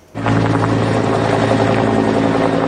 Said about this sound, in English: It was cool because it was the first time I got to go in a helicopter. A special treat for three Lake Country boys. Pilots from Coldstream Helicopters arranged for them to get a bird's eye view of their handiwork.